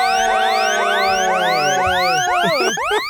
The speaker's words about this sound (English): There's the siren.